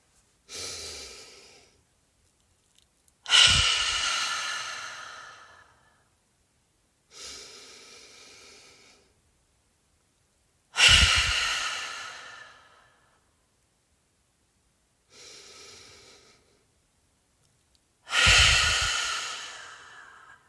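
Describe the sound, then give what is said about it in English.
Six slow, deep breaths in alternating pattern: softer airy inhales filling from the belly up to the top of the chest, followed by forceful, breathy open-mouthed exhales with a "ha" quality, emptying as much air as possible, clear with silences between. “And then we'll exhale through the mouth with a ha sound, emptying all the air we possibly can.”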